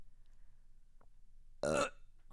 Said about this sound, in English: Imagine the burp just happened then cut in.